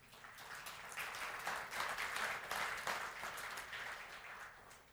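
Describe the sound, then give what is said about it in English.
An audience breaks into steady applause, many hands clapping at once in a dense, continuous patter that swells and then tapers off over about five seconds, with no voices heard. “Yeah, you can clap about that, right?”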